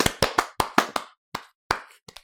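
Someone claps their hands about ten times in an uneven rhythm: a quick burst of sharp claps, then a few slower ones with pauses between. No one speaks.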